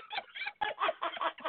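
rooster clucking

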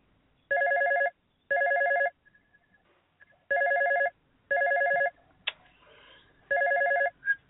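telephone ringing

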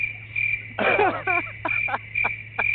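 crickets chirping sound effect

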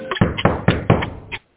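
knocking on a door

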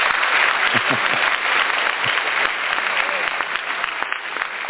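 round of applause

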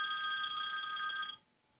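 telephone ringing

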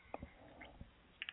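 sipping tea

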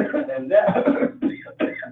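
man coughing

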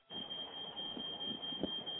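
fire alarm going off

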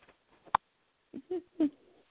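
pet bird squawking

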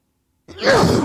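sneeze

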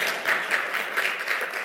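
audience round of applause

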